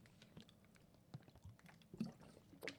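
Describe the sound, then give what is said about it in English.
Quiet sipping of water from a glass: soft slurps and small wet mouth clicks, with a couple of slightly louder gulps near the end. No one speaks. “Gotta take a water sip.”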